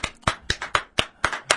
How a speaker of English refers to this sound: I was just thinking back when I was applauding. A lot of people, you know, have been on this show, and the artist always kind of looks at me kind of funny when I start applauding, but it's natural, isn't